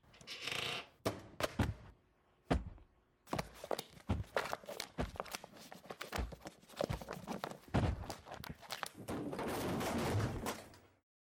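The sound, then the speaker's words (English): A shelf crashes over: a rapid burst of loud clattering bangs as objects tumble and strike the floor, followed by a stretch of rough scraping and rattling that fades out. “Did you just knock that shelf over?”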